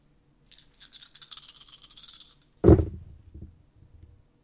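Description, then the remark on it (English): Fewer dice than before are rolled for an attack in a tabletop role-playing game. They rattle in a hand or cup for about two seconds with a bright, steady clatter, then hit a hard surface with a sharp thud and tumble in a few fading clicks. No voices. “That's a lot less dice than you rolled last time.”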